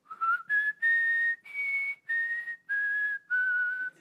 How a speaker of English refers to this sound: Okay, I knew I couldn't whistle in front of public.